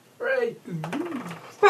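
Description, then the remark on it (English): A sneeze bursts out loud and sharp at the very end, cut off abruptly, after a couple of drawn-out voiced sounds with sliding pitch. “Bless you.”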